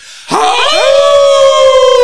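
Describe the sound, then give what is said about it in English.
A voice lets out a single loud wolf-like howl, swooping upward and then holding a long, steady, sustained note, with no talking alongside it. “Let's give the howling a howl.”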